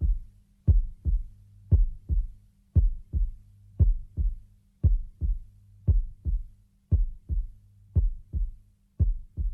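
A steady heartbeat thumps in deep, muffled double beats, lub-dub pairs repeating about once a second, prominent, then fading out, with no voices.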